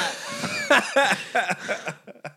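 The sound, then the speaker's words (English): A run of about eight short coughing bursts blending into breathy laughter, coming in a quick uneven rhythm before trailing off. “You're going to make me start coughing and shit with that kind of comedy, that comedic timing.”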